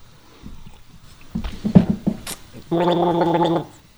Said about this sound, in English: And just to keep with the Listerine theme, I will gargle this. I will not just sip it.